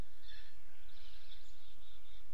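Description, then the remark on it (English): Faint birds chirp and twitter together outdoors, a soft overlapping chorus of many high calls drifting over a low rumble of background noise, with no one speaking. “God, there's so many birds.”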